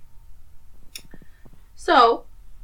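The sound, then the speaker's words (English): A recording's audio cuts out, dropping to near silence for about two minutes, broken by a few faint, irregular clicks, then a short burst of someone's voice cuts in before fading out again. “And then the audio cut out with clicking, and there's 2 minutes of my audio cut out.”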